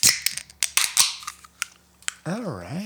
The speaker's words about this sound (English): Well, it's time to grab your glass, grab your cans, and let's open her up.